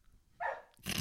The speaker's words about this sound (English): But it's see, the dog agrees.